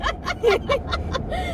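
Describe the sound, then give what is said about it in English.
A steady low rumble of road noise fills a moving car's cabin on a road trip heading to the mountain, while several short bursts of laughter and voices rise over it at regular intervals. “We're on a road trip. We're heading to the mountain. And so we thought we'd record our podcast on the way.”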